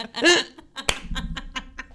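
A 'honk and clap' cheer, which came from Buffalo, Indiana: a brief, nasal vocal honk rings out, followed by one sharp clap and then a run of lighter, evenly spaced claps, like a quick rhythmic cheer.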